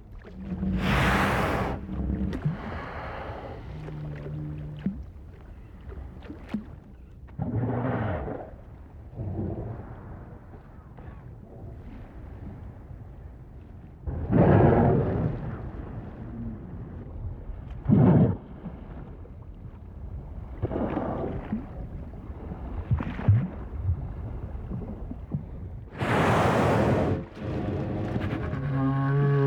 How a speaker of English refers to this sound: We leave you this week in the company of right whales, snoring. Recorded by Roger Payne.